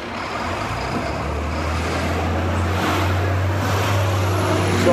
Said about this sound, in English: Sorry, hold up a second. This goddamn truck's in the fucking construction, man.